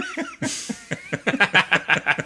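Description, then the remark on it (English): A harsh whooping cough (100-day cough) fit: one sharp burst followed by a rapid, rhythmic run of about a dozen hacking, voiced coughs that grow louder toward the end. “It's 100 day cough. It's back for real.”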